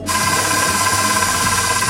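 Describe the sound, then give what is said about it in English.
An electric blender whirs steadily while mixing bread-dough liquids (3 eggs, oil, apple cider vinegar, water, and a water, yeast and sugar mixture), a loud, continuous motor drone with a bright high-pitched hum and a faint churning wobble underneath, with no one talking. “We're gonna blend these all together.”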